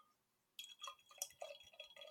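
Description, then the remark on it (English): After a brief silence, beer splashes and trickles into a glass, a bubbly, gurgling pour with bright clinks and drips that continues to the end. “Yeah, pour it sexy.”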